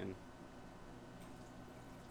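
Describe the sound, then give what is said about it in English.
A slow, thin pour of wine through an argon wine preserver device trickles steadily and quietly for a couple of seconds, with a faint murmur of voices underneath. “A very long time to pour. Yeah, this is not fun pouring.”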